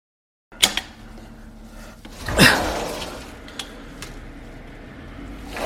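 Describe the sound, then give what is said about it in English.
A sharp wooden bang as a window slams shut on a person's fingers, followed a moment later by a louder burst of noise like a pained cry, then quiet. “What the hell did I do that's making you so aggressive that you had to slam the window on my fingers?”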